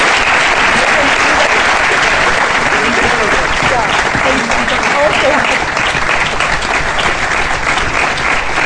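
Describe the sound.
Sustained audience applause for the panel at a book launch panel discussion, a dense, steady patter of many hands clapping at an even loudness for several seconds, with faint voices mixed into the crowd noise.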